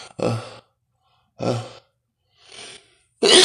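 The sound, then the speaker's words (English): A short run of breathy bursts, a few gasping build-up breaths with pauses between, ending in a loud, sharp sneeze, with no talking. “Forgive me. I'm about to sneeze.”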